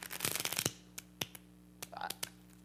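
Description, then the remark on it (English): A deck of playing cards is riffled quickly, a dense fluttering burst lasting under a second, followed by a few scattered crisp card taps and flicks over a faint steady hum. “We got cards. Okay, I'm not a magician, you won't be surprised, okay? But I'm gonna give these a few shuffle.”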